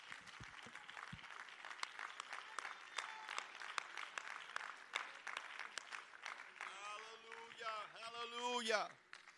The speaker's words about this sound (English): Why don't you clap your hands to the Lord one more time?